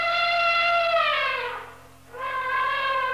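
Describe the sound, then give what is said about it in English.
An elephant's trumpeting call, a loud, brassy blare that slides downward and fades, breaks off for a moment, then bursts back in and holds steady. “I'm not sure I want to ride that elephant.”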